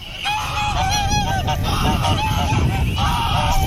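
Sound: goose honking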